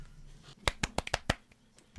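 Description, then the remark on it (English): A brief, soft round of polite golf claps from everybody in a group: about six quick, crisp hand claps in a loose, slightly uneven rhythm, fading out after a second, with no talking. “Golf clap from everybody.”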